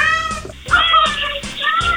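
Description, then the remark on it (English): An 8-year-old cat meows loudly at its owner's Ring doorbell camera, letting out three or four drawn-out, wavering cries in quick succession with only brief pauses between them. “the owner of a missing cat, was surprised to see her feline friend ringing her doorbell camera.”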